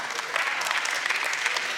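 audience clapping

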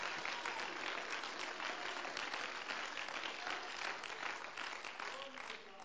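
audience clapping hands

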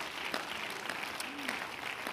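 audience clapping hands

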